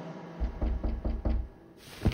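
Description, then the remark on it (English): Someone knocking softly on a bedroom door at night: about five quick, evenly spaced, muffled raps in a steady rhythm, fairly quiet, followed by a brief thud and then silence. “I heard someone knocking softly on my door.”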